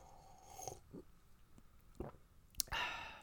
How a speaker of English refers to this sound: But let me take another sip of bourbon. I'll be okay.